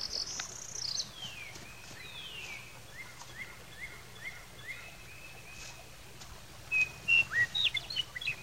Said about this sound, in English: Hey, listen, meadowlarks. Oh. Where? Look, right over there, see? Oh, bet you never saw one before, no, huh? No, I never did. Oh, golly, aren't they beautiful? Oh. Thank you for the birds that sing.